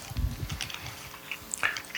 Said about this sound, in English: And Galatians talks, in fact, I'm gonna turn there really quick because I want you to see this. Go to Galatians chapter 5. Come on, Bible pages, turn. Britt and Audrey, they loved hearing the paper Bibles.